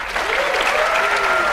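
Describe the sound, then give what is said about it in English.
A studio audience of real people at the show Wait Wait Don't Tell Me applauds steadily as guest Charles Tillman is welcomed, a dense wash of many hands clapping at a fairly loud, even level for a second and a half. “Are those real people clapping? They are.”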